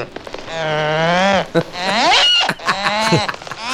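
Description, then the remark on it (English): A recording of a cow's moo played back at a pitch raised higher and higher, several drawn-out harmonic calls that warble and sweep upward, loud with no talking over them. “The cow's taking off into orbit.”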